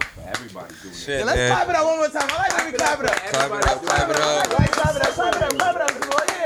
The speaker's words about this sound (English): I like the collective clap.